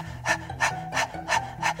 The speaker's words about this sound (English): This breath of fire is a rapid breath in and out through the nose. And the best way to feel it is to actually stick your tongue out and pant like a dog.